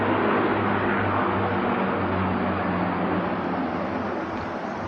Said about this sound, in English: I'll let that airplane, it must be a small private plane because it sounds like it's right overhead.